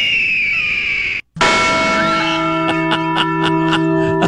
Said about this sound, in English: Second thing is we got a request from a listener that we play Squawky, then the Liberty Bell in quick succession, so it sounds like Squawky has flown into the Liberty Bell and caused it to ring. You mean something like this?